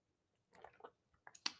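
A quiet sip of hot coffee: a couple of soft wet slurps followed by small mouth clicks and a short swallow-like smack, with no one speaking.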